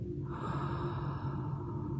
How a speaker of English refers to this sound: So using the diaphragmic breathing, which is basically like breathing into your belly, just using your nose breathing, and then breathing out with your nose, with your mouth. Breathing into your belly.